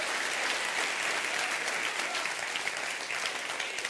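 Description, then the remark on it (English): A crowd standing on their feet claps steadily and loudly, a dense, continuous wash of many hands applauding for the full four seconds, with no voices standing out above it. “Stand on your feet and clap your hands.”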